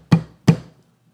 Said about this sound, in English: Forceful, urgent pounds on the door.